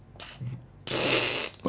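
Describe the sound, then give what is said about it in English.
A mouth-made imitation of a fart: a short raspy sputter, then a longer buzzing blast ending in a brief final burst, fairly loud, with no talking. “Okay, so you make the fart now.”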